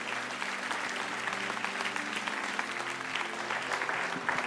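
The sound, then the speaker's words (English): An audience claps steadily together in praise to God, dense overlapping hand claps at a sustained, moderately loud level with no pauses throughout. “Come on, give God one more hand clap of praise.”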